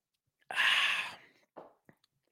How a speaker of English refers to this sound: Let me take this time to sip on my water, which I haven't even sipped on this entire time.